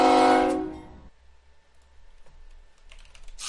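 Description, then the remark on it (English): A loud, brassy train horn blares for about a second and quickly fades, leaving near silence broken by faint scattered clicks and a soft rustle at the end. “Oh, pain train.”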